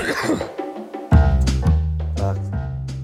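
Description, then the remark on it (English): Several harsh, throaty coughs come in quick succession, fairly loud, each one rough and partly voiced, after a brief noisy lead-in. “Cough really ruined the bed.”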